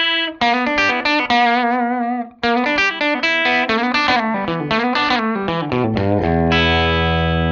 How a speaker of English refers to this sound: Great sounding amp. I'm just noodling here. So with a semi-hollow body guitar, you know, it can turn it up just a little bit with the good crunch jangly. And I can get it.